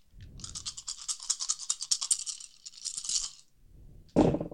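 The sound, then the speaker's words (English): Dice rattle quickly and continuously in a hand or cup for about three seconds, then clatter sharply as they are tossed onto a surface during a game, with no one talking. “I'm going to have to roll that again. Minus two dice.”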